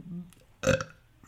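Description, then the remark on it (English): A voice imitates a single short, loud burp, a broad rasping burst that cuts off after a fraction of a second, preceded by a soft low murmur. “Now, this point, we're beyond accidental burping.”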